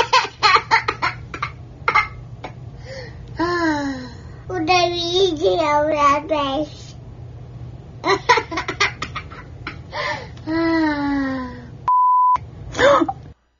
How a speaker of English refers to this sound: I have the audio of this with the F-bomb bleeped out.